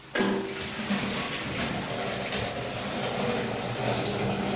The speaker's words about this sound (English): In this hilly suburban area in the northeast of Trinidad, an empty 5-liter water bottle kept in storage under a bathroom sink is being refilled.